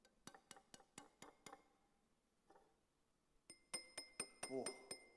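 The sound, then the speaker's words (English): Someone taps a drinking glass to test whether it is made of glass or plastic: a quick run of dull taps, a short pause, then a second series of brighter, ringing clinks that hum with a glassy tone, fairly loud. “Now, you might be able to tell just from looking at it, but how do you know if it's made from glass or made from plastic? Well, you test it.”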